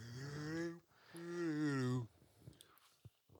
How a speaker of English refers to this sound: we got that midday yawn that dads have now.